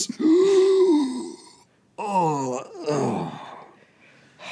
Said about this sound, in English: I'm doing a YouTube gasp.